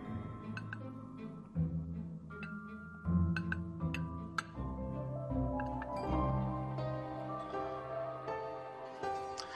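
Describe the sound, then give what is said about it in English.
Light, delicate clinks of plates sound several times at uneven intervals, soft, over a steady tonal background with no talking. “The plates didn't make as much noise as I would expect them to.”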